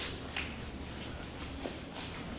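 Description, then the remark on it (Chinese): A few soft, unhurried footsteps echo inside a tunnel, landing at irregular intervals over a steady background hiss, with no one speaking. “这里就是隧道，你可以听到这个回音。”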